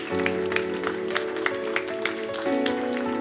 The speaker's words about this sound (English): And so, guys, we ought to cheer them on, shouldn't we?